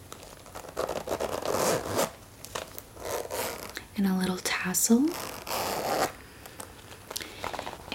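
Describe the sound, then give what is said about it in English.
A zipper on a large black snake-print clutch bag is pulled open in a few quick, scratchy runs, fairly loud, with soft rustling and a woman speaking quietly partway through. “Zipper”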